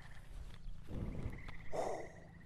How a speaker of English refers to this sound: And just like that, we have a beautiful, roaring fire. Now this fire, this will keep going, well, if the log catches.